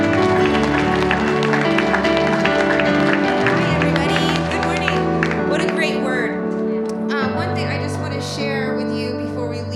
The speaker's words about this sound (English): Would you give the Lord a hand clap of praise?